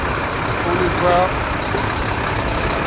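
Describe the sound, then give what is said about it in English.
A big Mack tractor-trailer truck engine idles in a steady, unbroken diesel rumble, with faint muffled voices briefly audible underneath. “So this is one of our Mack tractor trailers.”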